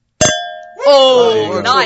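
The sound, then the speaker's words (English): Wine glasses of white wine clink once in a bright toast, the tone ringing and slowly fading for about half a second before voices begin talking over the tail. “Oh, nice. I like that. L'chaim. L'chaim.”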